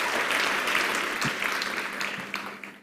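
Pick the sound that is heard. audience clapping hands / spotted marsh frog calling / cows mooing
audience clapping hands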